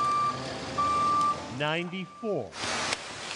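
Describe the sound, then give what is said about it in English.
A cement truck backs up, its steady high backup beeps sounding twice before a voice speaks briefly over the engine rumble, followed by a burst of hissing air. “Here comes the cement truck.”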